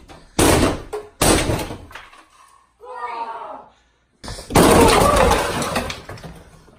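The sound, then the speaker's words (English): Two hard thuds strike a wooden door in quick succession, then after a brief voice a third bare-fisted punch crashes a hole through the door with a long splintering, cracking burst, loud. “Like he had shoes kicked, on, but punched this door, put a hole in it, and didn't even hesitate.”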